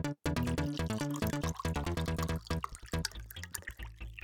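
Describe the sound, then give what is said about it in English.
Whiskey glugs steadily out of a bottle into a glass, fairly loud, its ringing tone shifting as the glass fills over a few seconds, with no voices. “She poured him some whiskey.”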